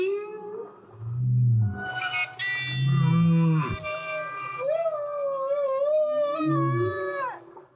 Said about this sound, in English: But in this one example I showed you, you can really hear that as the clarinet plays a steady note, then the whale actually tries to go, he tries to sing in a more steady way than he usually does.